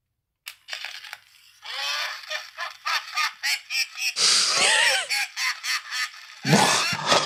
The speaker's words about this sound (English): So he would like hide these in drawers, and when you open them, like the laughing bag would start, and he would like scare all of his secretaries with these. So let's hear what a 1970s laughing bag sounds like.